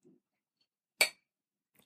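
A single bright, sharp clink of two glasses touching in a toast, ringing briefly before fading, with near silence around it.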